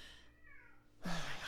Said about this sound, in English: And my cat is screaming in the background.